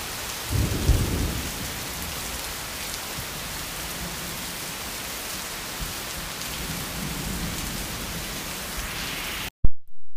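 Steady, heavy rain from a Saturday night storm pours down in a dense hiss, heard from the porch of a farmhouse-style cottage, with a deep rumble of thunder rolling in near the start before fading under the downpour. No voices.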